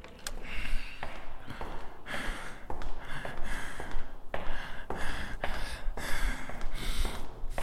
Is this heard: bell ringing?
no